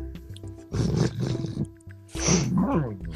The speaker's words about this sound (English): Oh yeah, she's growling. She wants the coach.